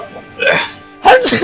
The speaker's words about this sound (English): Bless you.